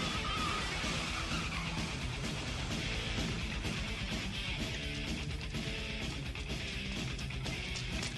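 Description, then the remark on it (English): A car revs hard and tears away, its tires squealing and skidding in a loud, continuous roar of engine and screeching rubber that fills the whole stretch with no voices. “and now you're speeding off in the wrong car.”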